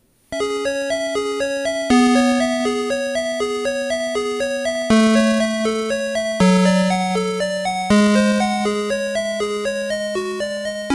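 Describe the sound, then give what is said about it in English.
Music from the computer game Thexter played through Tandy (PC Junior) sound: bright, buzzy square-wave tones play a quick, bouncy melody over a steady low bass note that shifts every couple of seconds, with no voices. “And then this is the Tandy sound version.”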